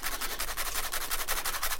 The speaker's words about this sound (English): The crazy loud fan that will annoy the listeners. Useless. Useless fan. I found a fan that, when you flick it, makes the sound of chewing.